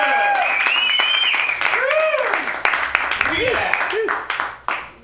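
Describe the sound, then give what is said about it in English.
A San Francisco audience claps steadily for about five seconds, a dense crackling wash of hands with a few high whoops and cheers rising over it before it thins out at the end. “Clap it up for her if you know her.”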